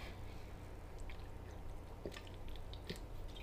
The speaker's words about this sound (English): I'm just drinking some water, trying to stay hydrated, you know.